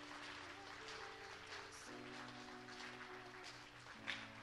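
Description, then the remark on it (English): An audience claps hands in a steady, dense wash of applause, a hand clap of praise for a man who came down to the altar, with sustained organ or keyboard chords playing underneath throughout. “Would y'all give him a hand clap of praise right now? Give him a hand clap for coming down here.”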